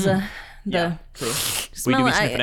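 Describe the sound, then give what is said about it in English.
Someone makes loud, exaggerated sniffing sounds as if smelling a turkey close to Thanksgiving, a long noisy inhale between voiced, speech-like vocal sounds. “Sniffing the turkeys.”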